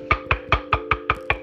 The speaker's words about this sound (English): The neighbor knocked on Richard's door.